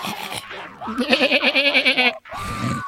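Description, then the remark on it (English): A goat lets out one loud, drawn-out bleat with a rapid, quavering tremble, lasting just over a second, framed by brief noisy sounds before and after. “Always the goat.”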